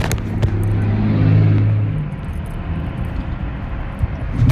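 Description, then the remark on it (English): A big truck engine rumbles loudly, a deep low drone that swells for a couple of seconds before settling into a steady idle growl. “Somebody sitting here being a jerk with their big old truck, like that's scaring somebody.”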